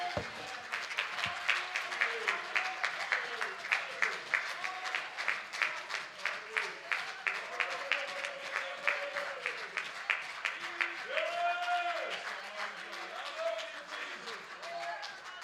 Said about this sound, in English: Somebody clap your hands and magnify the Lord for a moment.